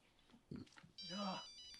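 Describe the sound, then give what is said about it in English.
A cell phone ringtone starts abruptly partway through, a bright electronic melody with buzzy, steady high tones, ringing loudly after a brief murmur of voices. “He pointed to the no cell phone sign.”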